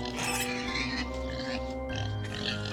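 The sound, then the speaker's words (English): A pig grunts and oinks steadily for a few seconds, a rough, throaty snorting, with no talking over it. “And you heard me make a very questionable pig noise. But you hear this.”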